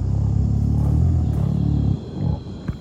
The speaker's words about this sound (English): Gorillas sing and they hum when they're eating. If you talk to a zookeeper, they'll probably be very familiar with this. But actually, gorillas also do it in the wild. So here's a clip of a gorilla humming.